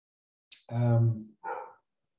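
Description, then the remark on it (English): A dog gives two barks in quick succession: a longer, full-throated woof followed by a shorter one, with silence around them and no talking. “The dog agrees.”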